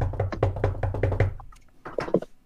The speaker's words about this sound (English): Hark! How they knock! Who is there?